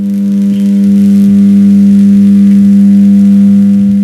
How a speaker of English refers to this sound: Across the country, I found many electric substations.